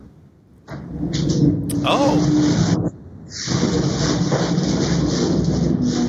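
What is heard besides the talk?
truck driving past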